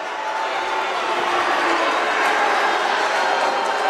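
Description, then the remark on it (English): A gym crowd at a basketball game involving Verona erupts in a loud, steady roar of overlapping voices reacting to a foul call, holding at an even level for the whole stretch. “And you can hear everybody in the gym has an opinion on that one.”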